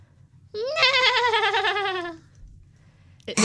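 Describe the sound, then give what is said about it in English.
A person imitates a horse's whinny with a single loud, wavering, bleat-like cry lasting about a second and a half, followed by quiet. “No, I thought it sounded like a horse.”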